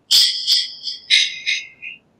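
A phone's text message tone plays alone: a quick series of five bright, high-pitched chirps, loud at first and tapering off, sounding somewhat like a bird call.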